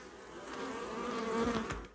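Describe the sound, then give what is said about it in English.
A steady buzzing of many bees raised by a farmer in Ghana hums continuously, with a few sharper passes as individual insects fly near, and no voices. “but after his training, he also recently learned how to raise bees.”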